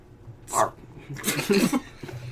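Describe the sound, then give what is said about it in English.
Dog noises at the law offices of Scruff and McDougal on a rainy day come in two short bursts: a quick yip, then a longer, rougher whining growl, moderately loud against a quiet background. “Hey, get that dog out of here.”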